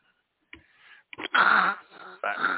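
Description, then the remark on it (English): Breathy puffs and rasping exhales from a child breathing right against the microphone, a few uneven bursts with a wheezy, hissing quality and brief gaps between them. “Are you breathing on the microphone?”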